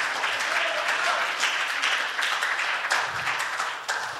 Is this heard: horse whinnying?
no